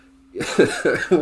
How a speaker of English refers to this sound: Also, apologies in advance, I'm still getting over that cough. I'm miles better than I was this time last week. I'm not going to be dead after this, but you're going to hear me cough every now and then.